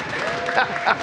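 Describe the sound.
A brief patch of faint applause, a soft, steady wash of scattered clapping with murmuring voices mixed in, swelling slightly twice before the second ends.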